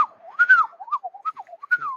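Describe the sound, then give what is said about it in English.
A person whistles a quick, warbling tune imitating a magpie's song, with rising and falling notes in short fluttering bursts. The whistling is clear and alone, with no talking. “Yeah, I don't think it'd pick up on my mic because it's halfway between a whistle and a like a warble sort of thing.”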